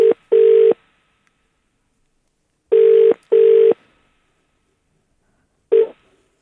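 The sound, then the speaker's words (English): A telephone ringback tone on an outgoing call: steady, clear double buzzes repeating with long pauses between, two full pairs and the start of a third, with no voices. “It's ringing, which is always a good sign.”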